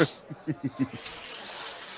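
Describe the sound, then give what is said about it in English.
A few quick spoken syllables give way to a steady, hissing rush of water as a toilet flushes, the whoosh holding at an even, moderate level until the end. “We heard you flush the toilet.”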